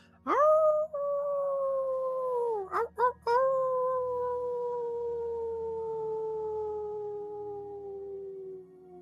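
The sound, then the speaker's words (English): A human voice howls like a wolf, one long sustained wail that swells at the start, breaks briefly, then slowly sinks in pitch for several seconds, loud. “You howl again once more.”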